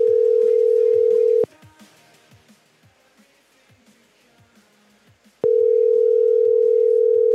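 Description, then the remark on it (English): A steady, loud telephone dial tone after the man being called hangs up, humming at a single pitch, cutting off for a few seconds of faint background noise, then resuming just as loud and unbroken. “He just keeps going and then hanging up.”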